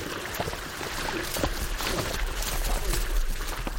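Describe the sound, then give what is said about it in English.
Heavy water sloshing and splashing as three moose, a large female and her two young calves, wade out of a Wasatch Mountain lake in Utah on a cool July morning; a steady churning with occasional sharper splashes, moderately loud, with no voices. “On a cool July morning, three moose frolic in the waters of a Wasatch Mountain lake in Utah.”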